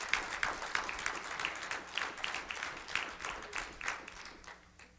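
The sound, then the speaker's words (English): A crowd applauds steadily, giving the Lord a hand clap, many hands clapping in a dense, overlapping patter that holds for several seconds before starting to thin and fade toward the end. “If you did, give the Lord a hand clap.”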